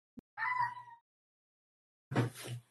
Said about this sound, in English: I heard a meow. I was supposed to say, I left the door open for I think that you. Was yes. A meow. It was a very big meow. I heard it. I was going to say, that was like one of our little boy's meow, like when he's trying to get attention, like, ow!